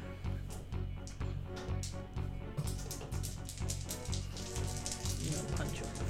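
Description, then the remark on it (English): Many dice rattle together in a dense, continuous clatter of rapid small clicks, holding a steady loudness for about six seconds over a low, sustained background hum. “I hate the rattling of all so many dice.”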